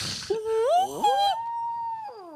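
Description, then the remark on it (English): A person imitates a wolf howl with a rising, wavering tone that settles into a long sustained note, then trails off; a single howl, moderately loud, with no talking over it. “And it's like dark as fuck, surrounded by like I heard a whoo, like.”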